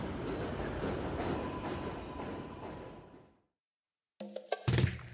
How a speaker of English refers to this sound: As we get to the bakery near the train station, a train passes overhead and...